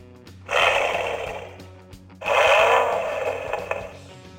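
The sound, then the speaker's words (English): A Mustang sports car engine roars in two loud, raspy bursts, the first about a second and a half long, then a brief pause before a longer rev that gradually trails off. “You want to know what a Mustang sounds like?”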